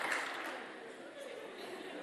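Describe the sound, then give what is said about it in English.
An audience claps steadily for about two seconds, a dense, even wash of many hands with no clear individual claps standing out and no voices coming through. “You're clapping, but the person I'm speaking to is sitting there slumping in the seat.”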